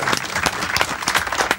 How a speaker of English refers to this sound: I don't clap for shit, and I clap for that. That was a good one.